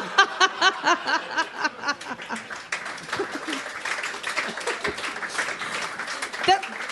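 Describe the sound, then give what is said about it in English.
Voices and laughter come first, then a small audience breaks into a thin, scattered round of applause that keeps a steady, uneven patter for several seconds. “That might be the most begrudging round of applause I've ever heard in my life.”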